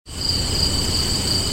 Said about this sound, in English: So we put the cricket noise here.